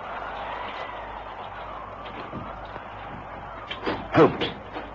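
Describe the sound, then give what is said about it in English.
In a Sherlock Holmes drama, the door to Mary Cook's bedroom is slowly pushed open from the corridor with a faint drawn-out creak, followed by a few sharp knocks and a louder thump near the end, all over a steady low hiss. “I'm going to push this door open.”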